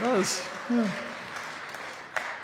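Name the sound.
golf clap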